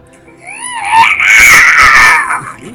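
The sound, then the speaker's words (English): A person's voice imitates a spider screeching in pain with a shrill, wavering, humanlike wail. It rises in pitch, then holds as a loud, strained screech for about two seconds, alone. “A spider screeching in a way that is vaguely human. Can we please get a demonstration of that?”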